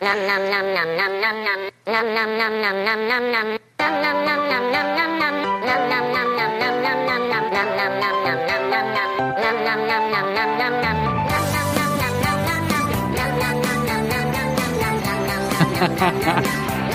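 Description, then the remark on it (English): A bouncy children's song plays loudly with a bright, shifting melody, cutting out twice for an instant early on, then swelling into a fuller, denser arrangement for the final stretch. “He gets excited hearing this song.”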